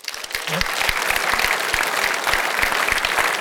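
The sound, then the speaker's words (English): A large audience of men in a church applauds steadily, dense overlapping claps filling the space at a loud, sustained level for several seconds, with a few voices faintly mixed in. “How many of you men, just by show of applause, this is your heart to love women and children and that you would be the pastor of your family.”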